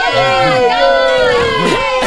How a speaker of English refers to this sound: And just as Tommy was approaching the finish line, Harry awoke with a start to the cheers of the crowd.